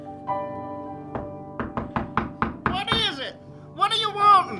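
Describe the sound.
Loud, heavy knocking on a door, a quick run of about seven hard raps that speeds up, followed by a raised voice calling out, with faint background hum throughout.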